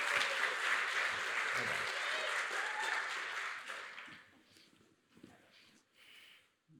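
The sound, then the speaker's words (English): An audience claps their hands as a friend comes up to read the morning's verses, a dense, steady burst of applause lasting several seconds before tapering off, leaving faint scattered sounds and a few soft voices. “Could you give her a little hand clap as she comes?”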